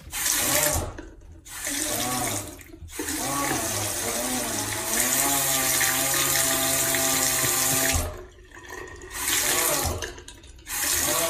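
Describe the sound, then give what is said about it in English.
Running water from a hot faucet with a loud, droning moan from the pipes, its pitch wavering and sliding like a groaning voice, cutting out briefly a few times before resuming. “A faucet that sounds like a moaning man.”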